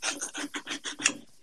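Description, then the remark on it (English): A knife cuts through a grapefruit in the Northeast in a quick, steady series of about seven rasping, sawing strokes, fairly soft, with no voices. “I'm listening to your wonderful voice as I chop a grapefruit to combat the cold here in the Northeast.”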